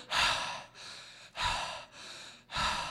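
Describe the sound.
A voice imitates hyperventilating as after falling into ice-cold water: rapid, ragged gasps alternate sharp inhales with breathy exhales, about five breaths in quick, even rhythm with no words.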